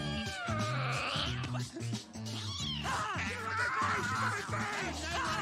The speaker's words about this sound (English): Whoa, that cat is obviously defective. What is wrong with you? You're gonna give it a heart attack.